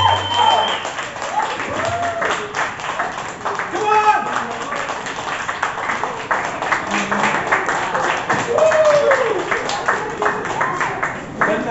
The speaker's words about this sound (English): Applaud the poet. Keep the applause going.